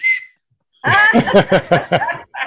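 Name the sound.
whistle being blown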